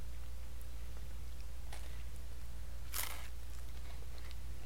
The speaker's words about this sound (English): Crust is crunchy. Mm-hmm. You know you heard that crunch. This is a Dave Portnoy pizza.